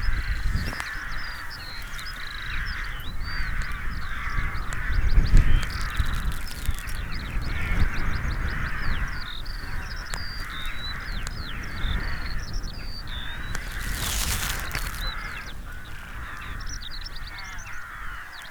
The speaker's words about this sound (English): Crows with us now.